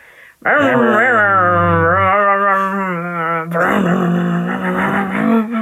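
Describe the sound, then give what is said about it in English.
A voice imitates a rumbling truck engine, a steady buzzing drone with a wavering pitch that rises slightly, then turns rougher and more breathy for the final couple of seconds. “You may notice that you can't hear the truck right now, but we can make truck sounds.”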